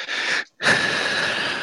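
Loud, heavy breathing into the microphone from a person with high blood pressure: a rough, noisy exhale, a brief silent pause, then another long airy breath with a slight wheezy edge.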